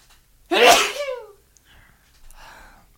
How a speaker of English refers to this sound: So, I gotta sneeze. Hold up.